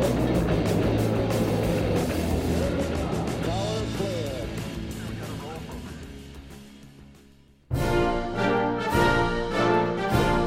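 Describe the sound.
A massive, rumbling roar of Saturn V rocket engines at the Apollo 11 liftoff fills the first seven seconds beneath a faint voice, slowly fading before it cuts off abruptly and music takes over.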